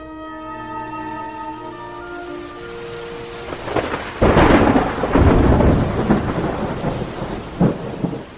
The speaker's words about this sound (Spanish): Se cuenta que estando en plena agonía, ocurrió una severa tormenta en la ciudad, lo que hizo que Beethoven despertara y dijera antes de morir: